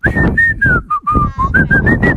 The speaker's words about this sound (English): start whistling.